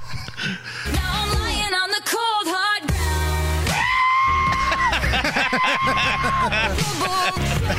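A loud, sustained scream-like wail is cut into a full-band music track, with the warbling cry repeated in bursts over driving instrumentation, like a remix built around the yell.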